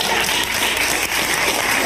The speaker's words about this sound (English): And people are applauding in his audience.